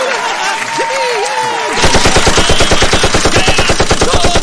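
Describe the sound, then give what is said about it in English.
A brief whooping voice gives way to loud, rapid clapping, a dense and steady burst of hand claps from a few people that continues to the end. “Clapping, what you're doing.”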